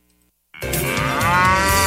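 A cow lets out a single loud, drawn-out moo that begins abruptly after a brief silence and holds steady and full-bodied, with no other sounds.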